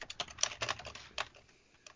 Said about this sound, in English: Clickety clack goes my loud keyboard.